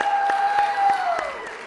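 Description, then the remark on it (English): An audience applauds mothers on Mother's Day in a dense, steady wash of clapping, with a sustained high cheer or whistle that holds its pitch and then slides downward near the end. “It's our moms that we were applauding for. Can we show our moms a little bit more love than that?”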